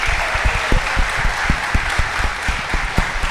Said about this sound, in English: Hey, give yourself a round of applause, Houston.